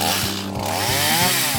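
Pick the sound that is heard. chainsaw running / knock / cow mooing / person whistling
chainsaw running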